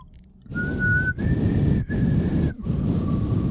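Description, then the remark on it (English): A person tries to whistle quietly: a few sustained, breathy notes separated by short gaps, with airy noise underneath the tone. Fairly quiet, with no talking. “I was trying to do it quietly then, and it came out very poorly.”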